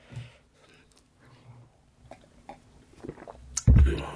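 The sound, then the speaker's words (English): Someone takes a quiet sip of coffee: faint slurping, small mouth clicks and breaths, then a sudden louder knock at the end, like a mug being set down. No one speaks. “Sip of coffee for a working man.”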